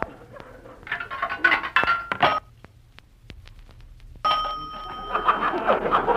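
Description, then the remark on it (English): A nickel drops into a payphone in a private house with a sharp metallic chime, followed by a series of mechanical clicks and rattles as a number is dialed, moderately loud. “A payphone in a private house.”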